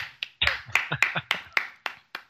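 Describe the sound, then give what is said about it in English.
A quick improvised stand-in for applause: about nine sharp, uneven clap-like bursts in just over two seconds, fairly loud and bright, with no talking over them. “That was our applause effect.”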